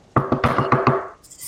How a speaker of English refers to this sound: After a while, Penny is putting on her makeup for the day, and then she goes over to Cyrix's door and knocks on it.